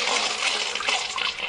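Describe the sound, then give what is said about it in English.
A toilet flushing: a steady rush of swirling water that fills the whole moment at even loudness, with no voices. “Now close your eyes and imagine the entire Jets organization and the big dude pushing their head into the toilet and flushing.”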